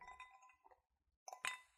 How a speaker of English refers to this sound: Who's clinking over there?